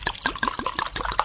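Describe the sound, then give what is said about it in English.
A drink glugs and splashes as it's poured into a big glass, a rapid run of bubbly, gurgling pulses at an even, moderate loudness, with no voices. “Ooh, that's a big glass.”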